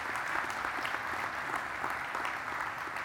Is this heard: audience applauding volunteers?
yes